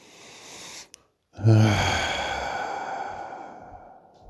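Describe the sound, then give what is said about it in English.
A single deep, heavy breath: after a brief pause, a loud sighing exhale starts abruptly and slowly fades over about three seconds, with no talking. “I'm breathing deeply, ain't I?”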